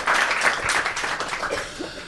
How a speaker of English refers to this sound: Okay, well done. Big round of applause. Great. For Dream Up.